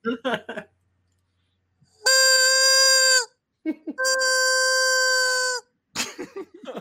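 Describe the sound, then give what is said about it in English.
Two long, loud, steady squawks from a golden chicken, each lasting over a second, with short bursts of voices before, between and after them. “The golden chicken wants to say something.”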